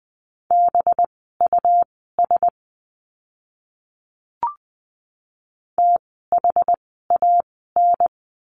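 A Morse code word from a lesson on the letter b, sent at 20 words per minute: a steady mid-pitched tone keyed into quick dots and longer dashes, repeated as two bursts of code separated by a pause and a soft click.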